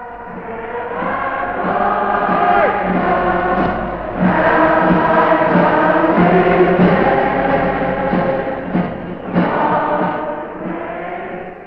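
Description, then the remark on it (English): A vast crowd in Whitehall sings a patriotic song together, conducted from a balcony by the wartime leader in a blue siren suit, many voices blending into loud, sustained, swelling notes that fill the whole stretch with a reverberant, open-air sound. “came out in his blue siren suit onto a balcony in Whitehall to conduct the vast crowd in the singing of Land of Hope and Glory”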